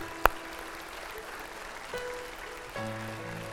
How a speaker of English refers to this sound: Let's give them a hand as they come down. It takes a lot of courage.